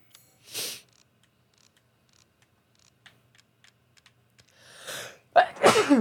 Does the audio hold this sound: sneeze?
yes